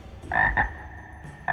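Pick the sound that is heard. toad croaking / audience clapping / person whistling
toad croaking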